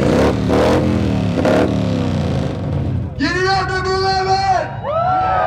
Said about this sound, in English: This is the Broken Spokes Loud Pipes Contest, where a bunch of bikes line up in the backyard of the bar and compete for best exhaust sound. The central identifying element of the Harley-Davidson is the sound of its exhaust.